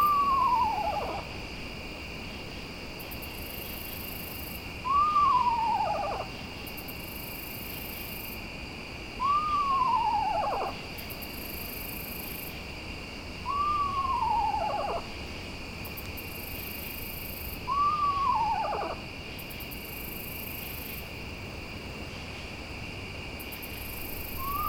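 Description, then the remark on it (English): A small owl repeats a single hooting note six times at night at steady intervals of about four seconds. Each hoot is short, mid-pitched and slightly falling, over a constant high drone of crickets. “Well, they stay on one note repeated.”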